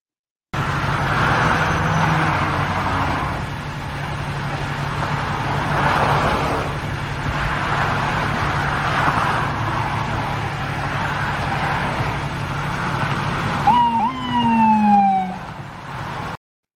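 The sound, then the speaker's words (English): An FDNY ambulance siren with a New York State Police escort goes by on 87 South in upstate New York amid steady road and traffic rumble, the wailing tones growing loud and sweeping clearly near the end as the vehicles pass. “So for our podcast listeners, you can hear the siren in the background, and that was as the ambulance was coming down, escorted by New York State Police down.”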